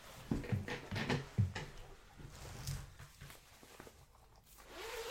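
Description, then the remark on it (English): A bomber jacket zipper is pulled up, a few quick rasping strokes in the first couple of seconds, followed by quieter fabric rustling and handling noises. “Okay, bit zip. Of ASMR.”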